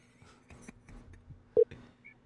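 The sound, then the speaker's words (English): A short, loud electronic phone beep rings out, followed by a fainter higher blip, like keypad dialing tones as someone places a phone call, over quiet background rumble and a low steady hum. “Are you calling him?”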